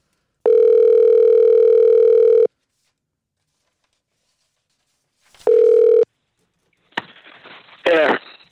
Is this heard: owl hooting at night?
no